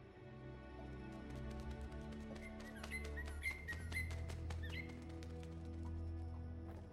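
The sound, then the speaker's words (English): A few short, high chirps from a bird that has got inside sound intermittently over a low, sustained musical drone, with scattered sharp clicks and taps. No one speaks. “However that bird got in here, that's our way out.”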